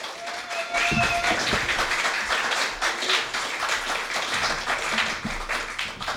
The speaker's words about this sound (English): Can we please get a massive round of applause